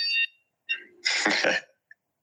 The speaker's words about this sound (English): Coming at you live from the office. That's the 10 a.m. fire alarm on a Tuesday.